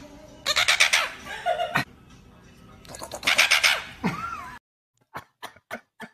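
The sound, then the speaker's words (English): Caged tropical birds squawk and call in two loud, harsh bursts with rapid pulsing notes, followed by a few short, sharp chirps after a brief silence. “You know, I mean, here's what some tropical birds possibly sharing a likeness to me think about being caged.”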